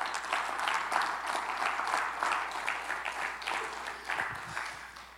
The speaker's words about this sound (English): Come on, give the Lord another hand clap of praise.